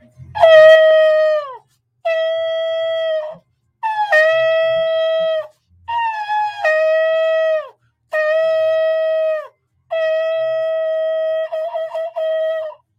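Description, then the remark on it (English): Seven loud trumpet blasts in a row, each a steady, bright held note lasting about a second, some bending downward as they end, separated by short pauses with no talking. The trumpet is blown to sound an alarm during a religious teaching. “Now listen, we know that according to God's calendar, and first, let's go ahead and blow the trumpet.”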